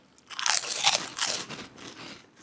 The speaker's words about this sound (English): That's a good soft pork rind, too. It crunches just right.